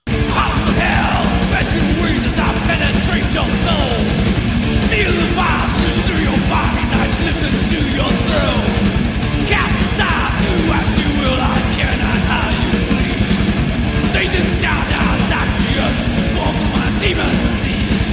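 Harsh screamed heavy metal vocals roar over a loud, dense wall of distorted guitars and pounding drums, sustained at full intensity for the whole stretch without a break.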